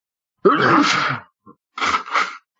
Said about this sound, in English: It's just sneezing, bro. I don't know. Give me a few.